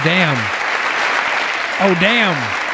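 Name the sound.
audience cheering and applause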